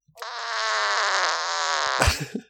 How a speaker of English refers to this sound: No, you had the fart. We had the fart noise, so that'll work.